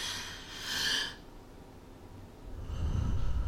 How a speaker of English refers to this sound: I'm breathing into the mic. That's a little ASMR for everybody, okay?